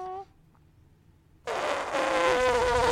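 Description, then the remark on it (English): A person blurts out a loud, buzzy, brassy vocal imitation of an elephant trumpeting, bursting in suddenly after a brief pause and holding for over a second with a wavering, rasping tone. “That was supposed to be an elephant.”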